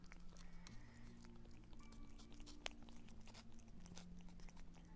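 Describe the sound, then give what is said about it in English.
Steady wet chewing and smacking from a cat eating tuna, with rapid crunchy bites over a low background hum, no voices present. “Is she eating the tuna? She's just chewing it.”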